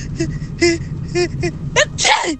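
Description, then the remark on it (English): A run of short, high, squeaky dry sneezes in quick succession, ending with a sharper, louder burst, with no talking over them. “And This one's more of like a, you have like a dry sinus, not a wet sinus.”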